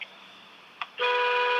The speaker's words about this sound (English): Oh, yeah, there it is, the horn honk. That's Jersey traffic for you, dude.